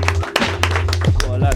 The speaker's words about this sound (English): Can I get some applause? That was awesome.